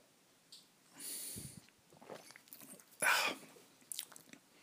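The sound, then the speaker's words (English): Sipping from a cup of cold coffee: two noisy, airy slurps about two seconds apart, with faint mouth clicks and a swallow between them, no talking. “The regret of sipping a cold cup of coffee.”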